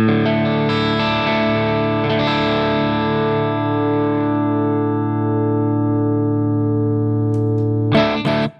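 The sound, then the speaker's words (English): A heavily distorted electric guitar chord, played through a Rev 4x12 cabinet simulation, rings out loud, sustaining thick and dry for several seconds before fading slightly, then a brief new strum at the end. “So the first position is Rev 412 with no reverb, then with, then a 212 dry, 212 wet.”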